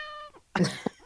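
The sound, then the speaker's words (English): A single short cat meow with a steady, tonal pitch, followed by a brief breathy burst like a cough and a person saying a single word. “That was a cat.”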